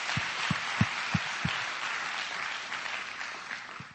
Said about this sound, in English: So let's give him a round of applause.